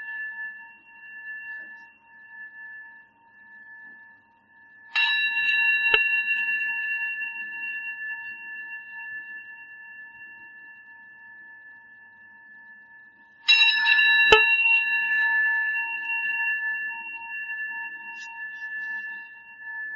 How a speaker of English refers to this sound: We practice receiving the sound of the bell.